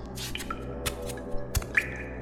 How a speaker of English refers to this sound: Water dripping on me. Up there, stalactite.